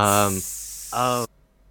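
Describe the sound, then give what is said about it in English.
A deep fryer in the back sizzles with a steady, bright hiss throughout, while voiced sounds briefly break in over it twice before everything cuts off abruptly into near silence. “I could hear the deep fryer in the back.”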